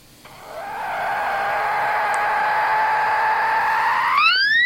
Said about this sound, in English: And here's a mother dolphin with her calf.